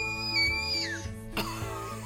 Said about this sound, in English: Oh wow. That's a good screech. That sounds like a baby fox or something. Doesn't it? That is the most like joyous trilling baby sound. Yeah, he's making a big like watermelon grin as he does it.